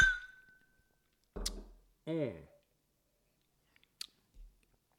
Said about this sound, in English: But I love this Graham's 20-year-old Tawny Port. It's got a beautiful amber golden color. Nice bouquet on the nose. Let me take a little bit of a sip here and say cheers.